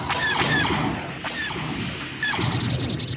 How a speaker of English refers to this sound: TIE fighters swiftly come.